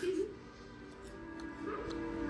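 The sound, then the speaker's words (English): Puppies whimper and yip, a steady run of high, whiny cries with a few sharper barks mixed in, fairly quiet throughout. “The doggies are back!”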